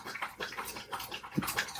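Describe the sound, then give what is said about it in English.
A dog pants steadily in quick, breathy bursts, soft, with no one speaking over it. “You hear my dog in the background?”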